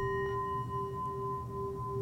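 A singing bowl rings in one long, steady tone, its clear mid-pitched hum layered with bright shimmering overtones that hold without fading, over a soft low rumble. No one speaks.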